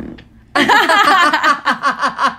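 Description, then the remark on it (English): A baby's fart erupts suddenly after a quiet moment: a long, loud, sputtering blast with a buzzy, wavering tone that breaks into a run of rhythmic pulses before ending. “How weird is it that babies have louder farts than us sometimes?”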